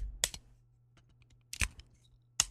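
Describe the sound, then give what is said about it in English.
A small plastic Stryka toy figure's ball joint clicking, three sharp clicks spaced unevenly over a couple of seconds with faint creaks between them and a low hum underneath. “I hear clicking. That's the ball joint.”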